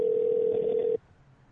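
A steady telephone dial tone hums for about a second, then cuts off abruptly, leaving faint background noise, as a phone call that got cut off is redialed. No one speaks.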